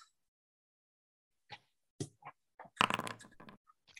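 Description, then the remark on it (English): Dice rolled for a telepathy roll, coming up a 6 and a 5: a few sharp clicks and clacks, then a short rapid clattering burst as they tumble across a hard surface and settle. “That's, I rolled a 6 and a 5 on the dice.”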